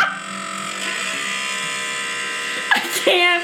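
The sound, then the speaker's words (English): The faulty heater fan of a four-month-old car, giving no heat, drones with a steady, buzzy mechanical whir like an old lawnmower, a small motor grinding unevenly, holding a constant level before a couple of brief louder bursts near the end. “So I have no heat in the car. It sounds like an old lawnmower.”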